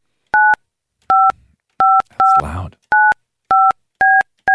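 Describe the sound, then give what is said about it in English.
Seven loud touch-tone keypad beeps sound in a steady rhythm as a phone number is dialed, with a brief spoken word from a voice in the middle. “I still squint my eyes when somebody's dialing a phone like that.”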